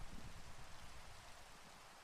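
Steady rain falls in a soft, continuous hiss with a faint low rumble beneath, unbroken and fairly quiet throughout, with no voices.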